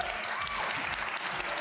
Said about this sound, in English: Hello, everyone. Thanks for the warm applause. It's very exciting for all of us at Funcom to be here at the PC Gaming Show.